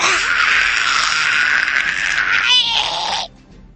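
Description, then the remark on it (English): A loud, harsh, high-pitched animal shriek rasps on almost without a break for about three seconds, with a brief wavering squawk near the end before it cuts off sharply. “And no individual is around, except you hear the strange sound of scratching, skittering, and then three very loud, squawking shrieks.”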